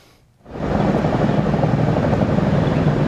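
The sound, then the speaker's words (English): After a brief quiet moment, a CH-47 helicopter carrying an 18-by-12-meter national flag roars in loud over Taipei's presidential office at dawn during a National Day Parade rehearsal, with Apaches and Super Cobras; its rotor wash a dense, steady rumble with a fast low thumping that holds to the end. “A CH-47 chopper carries an 18-by-12-meter national flag, the largest ever made.”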